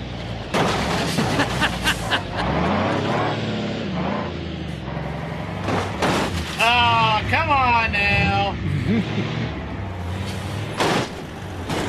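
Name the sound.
truck driving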